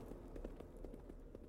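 Rapid, rhythmic hoofbeats of Wang Chu's horse galloping for the tree line, a steady run of soft thuds over a low rumble, fairly quiet and heard on their own without any voices.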